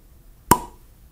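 A single sharp cork pop bursts out of a bottle of Lost Abbey 2012 edition beer, a quick bright plop with a brief ringing tail, then quiet. No one speaks.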